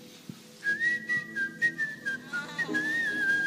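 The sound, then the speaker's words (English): Someone whistles a tune, a clear, bright melody of held notes that rise and fall for a few seconds, with faint low background rumble and no talking. “So when the guy saw the horses, I don't remember what the Bible says next, but I think he's just started whistling.”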